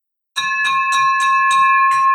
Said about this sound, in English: You have been waiting 10 months on this victory bell. Now you've heard it.